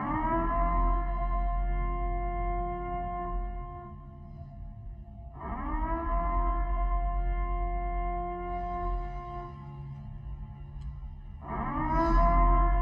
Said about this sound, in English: So they put this curfew in order to try to slow the spread. There's nothing anyone needs to be on the roads for except emergencies. So starting at 9 p.m., the Acadia Parish Police Department played the following siren.